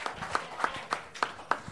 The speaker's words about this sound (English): This is where you clap to begin the momentum of a 1 minute set.